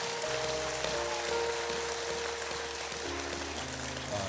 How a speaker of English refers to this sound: Let's give God another thunderous applause for him.